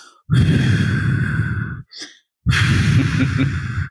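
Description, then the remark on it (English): A person demonstrates calming deep breathing the way their son does it, blowing out two long, loud exhales through pursed lips with a brief soft intake between them, without any talking. “He takes 3 deep breaths. And he literally is so cute because he literally, if you can see me, he'll purse his lips and go.”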